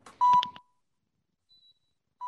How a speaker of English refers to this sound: That sounds like a heart monitor. Yeah. We're on life support.